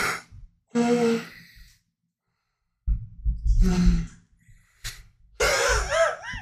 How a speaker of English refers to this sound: Dude, it was an amazing yawn that I was fucking just over here listening to. I hate it. Because you started so almost sounding like an accordion. I hate it so much.